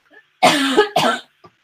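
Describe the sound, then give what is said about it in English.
Two loud, harsh coughs in quick succession, followed by a faint brief noise after them. No one speaks. “Coughing now.”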